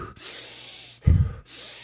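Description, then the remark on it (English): Someone demonstrates hard, forceful inhales through the nose: two long, hissing, airy pulls of breath, separated by a short, louder, lower huff of air. “And the breathing, you know, in hard through the.”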